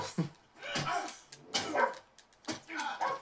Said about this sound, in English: Well, their dog barks.